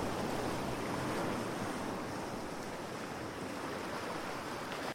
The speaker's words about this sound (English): While doing so at his desk, he had noticed a new smell from the river and a change in the sound of the water rush.